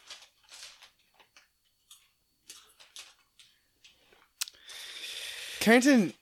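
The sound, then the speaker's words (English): Irregular crunches of someone eating potato chips from a bag, a series of short crisp bites, followed by a louder burst of crinkly bag rustling and a brief squeaky sweep. “So he's just crunching and munching. So he's just going for that bag of chips.”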